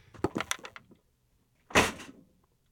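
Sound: door being closed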